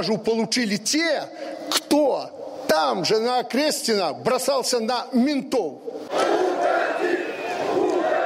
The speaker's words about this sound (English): So his speech was led with whistles from the crowd and with the shouts, go away, go away.